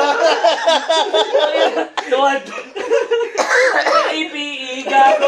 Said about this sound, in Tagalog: Oh, hingang malali. Ubo.